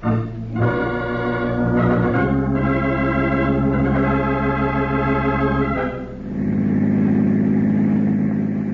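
A car engine hums steadily with a low droning pitch as the car drives along a road, just past a water tower, getting close to Caldwell, rising and shifting slightly as it changes gear around two and six seconds, then settling into a continuous rumble with no voices.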